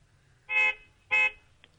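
Two short, loud car horn honks from Patton's car, in quick succession, each about a quarter second long, with a brief gap between them over a quiet low rumble.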